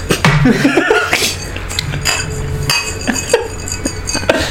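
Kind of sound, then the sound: household object, glasses clinking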